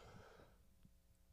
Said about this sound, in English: I'm going to sneeze.